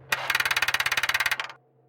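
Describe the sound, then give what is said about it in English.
A car engine cranks in a rapid, even chugging rhythm for about a second, loud and rattling, as a key is twisted in the ignition, then cuts off and fades without catching. “I twisted the key in the ignition frantically.”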